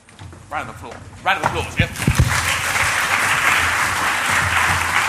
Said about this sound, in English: Round of applause, yeah. So, thanks.